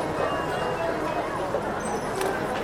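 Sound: horse hooves clip-clopping past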